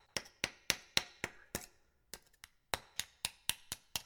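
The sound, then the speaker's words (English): An axe knocks at the pins of door hinges, a quick, steady series of about a dozen sharp, ringing metal strikes with a brief break partway through. No one speaks. “The hinges! Knock the pin out, and the door will fall open.”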